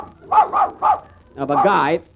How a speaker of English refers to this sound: Madam, must your dog bark when I'm talking? You don't expect him to laugh, do you?